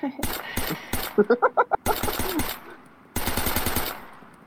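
Three bursts of rapid-fire video game gunfire, loud and sharp, with a quick run of ringing, pitched metallic clinks between the first and second volleys.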